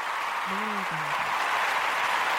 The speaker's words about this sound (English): It just deserves. A round of applause.